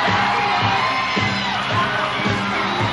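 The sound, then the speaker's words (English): A huge, jam-packed capacity arena crowd cheers continuously, giving a standing ovation to World Wrestling Federation heavyweight champion Hulk Hogan: a dense, loud roar of many voices with occasional shouts and whoops rising above the steady wall of noise. “Take a look at this jam-packed capacity crowd cheering on this tremendous human being.”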